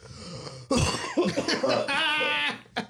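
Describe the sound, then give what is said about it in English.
A loud, close-up cough bursts right into the microphone, followed by a rough, phlegmy hacking stretch and a short final cough, with no talking. “Heard all the slob and cough.”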